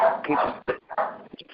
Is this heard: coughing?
no